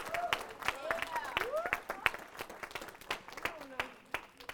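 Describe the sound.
A church audience claps in a dense, uneven patter that runs the whole time, welcoming two guests from a women's ministry, while voices call out and cheer over the applause with rising and falling shouts.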